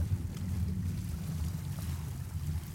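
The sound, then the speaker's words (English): A water taxi's engine drones steadily as the boat motors across the water from Fair Harbor to the village of Kayukit, Vancouver Island, a low continuous rumble with wind and hull noise washing over it, fairly loud, no voices. “We arrive at Fair Harbor, the end of the road, and take a water taxi over to the village of Kayukit.”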